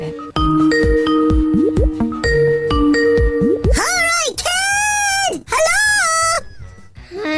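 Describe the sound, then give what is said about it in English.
A Skype video call ringtone plays, a melodic run of bright synthetic tones that repeats in short patterned bursts, followed by longer warbling tonal phrases before fading out. “It's ringing anyway.”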